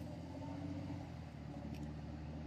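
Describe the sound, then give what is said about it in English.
A FedEx delivery truck drives past, its engine a steady low drone with a deep throbbing hum that stays loud throughout, without any talking over it. “wait for the truck to go by, Mr. FedEx.”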